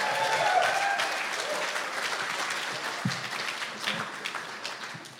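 An audience claps steadily to welcome a guest coming out, a dense, even patter of many hands that fades gradually over about five seconds, with a few faint voices and cheers mixed in.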